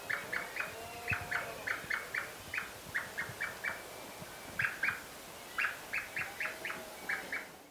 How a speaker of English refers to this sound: The chicks give typical peep calls to solicit food from their parents.